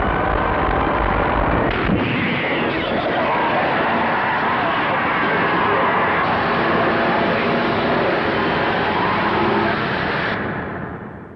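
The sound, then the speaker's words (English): A haunting soundtrack from a sci-fi film's original trailer, a sound effect also used in the Prometheus trailer: a dense, loud, roaring wall of sound with a heavy rumbling low end, sustained for about ten seconds before tailing off. “It's a haunting soundtrack. They actually use the same sound effect in the Prometheus trailer.”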